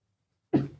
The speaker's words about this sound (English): All the body functions are happening. I got to sneeze.